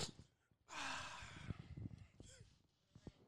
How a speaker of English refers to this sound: Why am I the only one sniffing coke?